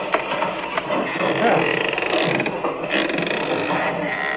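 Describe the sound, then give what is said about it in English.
A door behind a bar, leading outside into the dark, creaks open slowly in one long, grinding squeal that holds steady for several seconds, with a rough mechanical texture throughout. “And a good thing, too, or they'd seen that door open.”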